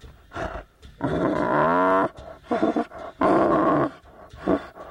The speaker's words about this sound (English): This 2-year-old male tiger, Paiyo, was rescued by Thai border police a year and a half ago.